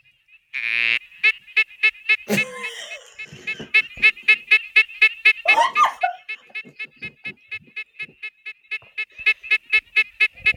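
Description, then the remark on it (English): An eastern smooth frog calls in a long run of rapid, evenly spaced pulsing notes, loud, opening with a sustained drawn-out note, with a couple of brief harsh chirps mixed in early on. “But the almost identical looking eastern smooth frog sounds like this.”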